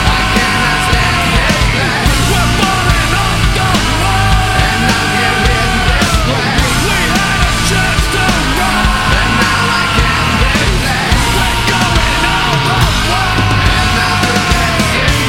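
A loud, dense nu metal track with heavy distorted guitars, pounding drums and strained, shouted vocals, the wall of sound staying thick and steady throughout.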